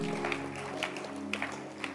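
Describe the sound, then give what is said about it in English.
An audience claps their hands for a woman coming forward to go to Bible school, in a dense, steady burst of applause with a few sharper claps standing out, over a low sustained musical hum, with no voices. “Clap your hands for her.”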